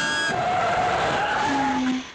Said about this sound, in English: Air brakes.